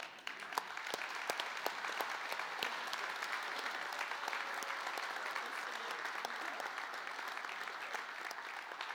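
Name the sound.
audience applauding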